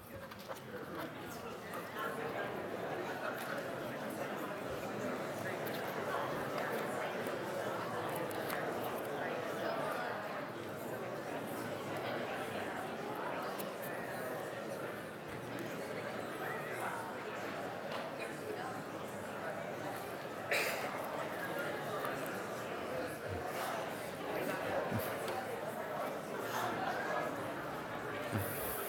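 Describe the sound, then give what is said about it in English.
Audience members talk in pairs all at once, each telling the person next to them who their greatest of all time is. A steady wash of overlapping conversation with no single voice standing out holds an even level for about half a minute. “turn to someone next to you and share with that person who your GOAT is in life”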